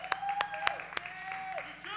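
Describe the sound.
Audience applause for a person who stepped in: a handful of sharp, evenly spaced claps ring out over a steady bed of voices and high tonal whoops, the clapping thinning out after the first second.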